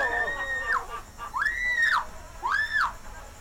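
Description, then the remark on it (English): A person lets out three loud, high-pitched screams while falling off a cliff after their line is cut, each swelling and then trailing off, separated by short breaths, over a steady rushing background noise. “That's me screaming right there.”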